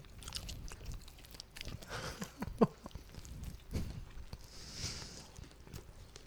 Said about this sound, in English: Make sure we're doing this SMR shit. ASMR shit right into the microphone. You chew that shit.